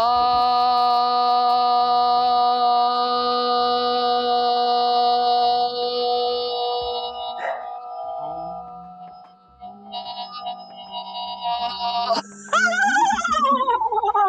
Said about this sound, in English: and we're going to chant Om. Om, the classic Om. So you can cross your legs or keep your legs open, and let's see how Rolf responds to our chanting.